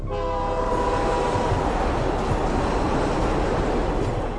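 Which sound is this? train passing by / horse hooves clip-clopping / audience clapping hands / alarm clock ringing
train passing by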